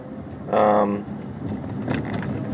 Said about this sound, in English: Man, well, I'm in some major traffic right here. Ooh, big news flash for LA, right? Yeah, I'm on the famous 101, heading right past the Capitol Records building.